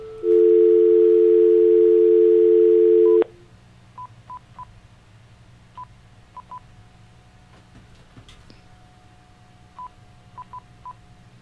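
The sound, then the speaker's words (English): A steady telephone dial tone hums for about three seconds, then stops, followed by a series of short touch-tone beeps as a call is dialed on a phone live on air, in small clusters with pauses between them, clear with no talking. “Oh, here, hear me call it. Here, hold on. Here, we'll do it on the air.”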